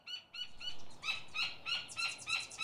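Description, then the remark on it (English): Gila woodpeckers call as they tip the feeders and drink: a quick series of sharp, repeated squeaky notes, fairly loud, rising in intensity toward the end, with no voices present. “One of my rewards is being able to listen to the Gila woodpeckers talk as they tip the feeders and drink in the sweetness of life.”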